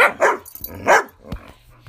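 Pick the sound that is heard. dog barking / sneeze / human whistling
dog barking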